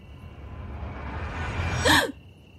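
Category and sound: human body sound, sharp gasp on waking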